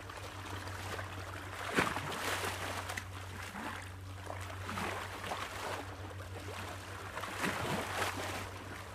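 Calm ocean waves wash and lap softly in a continuous watery hiss, with gentle swells every few seconds over a steady low hum, and no voices.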